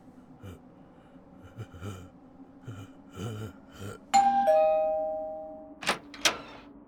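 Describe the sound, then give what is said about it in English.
A two-tone doorbell, rung by trick-or-treaters on Halloween, chimes once, loud, its tones ringing out and slowly fading, after soft breathing and shuffling; a couple of sharp gasps or knocks follow near the end. “I'll be lookout. You ring the doorbell.”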